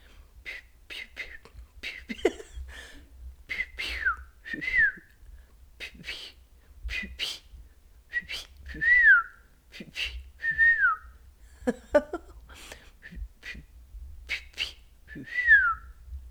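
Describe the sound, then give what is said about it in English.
A person practises whistling imitation bird calls for a challenge: short chirps and quick sliding notes that often swoop downward, with breathy puffs and pauses between them. No words are spoken. “Practicing making bird noises for our challenge today.”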